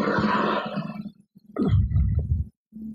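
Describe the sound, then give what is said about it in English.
A man growls in low, rough bursts: a long rumbling growl, a brief pause, then a second guttural snarl and a short final grunt, all fairly loud with no speech. “Some dude growling.”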